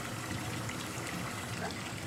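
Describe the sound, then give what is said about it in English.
Steady, dense rush of water from a toilet being flushed again and again until it overflows, a broad hissing wash with a low churning rumble underneath, even in loudness throughout. “Oh my god, it's too much water. It's everywhere.”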